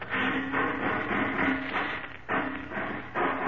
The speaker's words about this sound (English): Hear that, Robin? Yeah. Sounds like he's ripping off another door. Must be the vault.